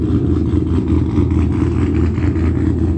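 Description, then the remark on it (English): A car engine runs loud, a steady low rumble with slight surges in pitch, continuing throughout with no voices. “And they hop in their car to engage in that conduct.”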